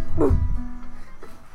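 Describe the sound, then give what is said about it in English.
A dog gives a single loud bark, followed by a fainter short yip about a second later against a low background rumble. “Dogs barking and shit.”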